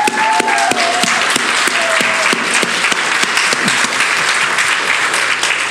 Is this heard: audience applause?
yes